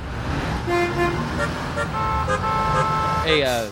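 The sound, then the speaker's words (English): Several car horns honk over a steady rumble of road traffic, overlapping toots of different pitches sounding fairly loud, with a final rising blare at the end. “We're stuck in traffic anyway.”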